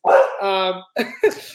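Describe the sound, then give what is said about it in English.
A pet dog barks: a loud bark that stretches into a drawn-out, whining tone, then two short, sharp barks after a brief pause. “yeah, it's my dog.”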